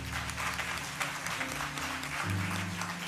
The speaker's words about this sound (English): So if you will with us, give our kids one more round of applause.